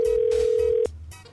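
An outgoing phone call rings on the line: a steady, mid-pitched ringback tone holds for under a second, then cuts off, leaving a faint hiss with no voices.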